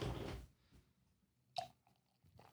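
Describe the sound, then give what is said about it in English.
A short burst of wet liquid sound as warm PBR beer glugs out of a can, followed by quieter gurgles and a brief splashy pop, with no talking. “Pour some of that warm PBR.”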